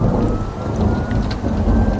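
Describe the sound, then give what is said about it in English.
Heavy rain pours down steadily at night in Arizona onto a backyard of packed desert dirt, turning it to a thin, murky soup, a dense, continuous hiss of drops drumming on surfaces, with low rumbling thunder underneath throughout. No voices. “But tonight, oh, how it had rained.”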